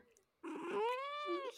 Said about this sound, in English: That's her. Oh dude. Oh, everybody, Davis Cat Mochi is here. You're so shy.